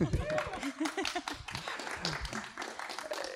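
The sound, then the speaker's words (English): Audience applause for guests from Rocky Ridge Brewing Company and Endeavour Carbon Active Certification Consultants: many hands clapping in a dense, steady patter for a few seconds, with a few voices calling out underneath as the clapping continues. “Big round of applause.”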